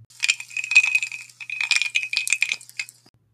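Ice cubes, a couple of them, clatter into a glass while a drink is being fetched, in two quick bursts of bright, ringing clinks and rattles, with a sustained high glassy tone under the tumbling cubes, then a last small clink.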